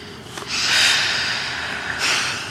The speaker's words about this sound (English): Okay, you're starting to hyperventilate. Here, match my breathing.